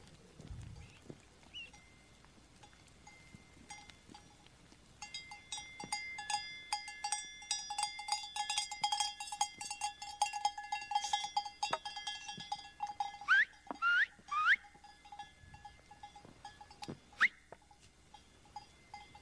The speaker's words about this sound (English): So here we go. Are you ready? Get ready to count the goats.